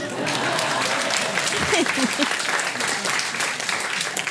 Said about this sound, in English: Yeah. Yeah. That was very well said. Usually people clap.